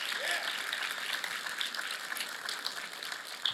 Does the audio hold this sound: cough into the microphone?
no